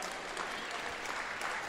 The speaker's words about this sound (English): I'm preaching better than you're clapping today. It's okay.